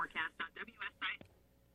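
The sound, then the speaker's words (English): A garbled, choppy phone line of a caller on live radio: five short bursts of distorted, tinny voice stutter in quick succession, then the signal abruptly cuts out into near silence. “all of a sudden we've had some weird glitches with the phone tonight”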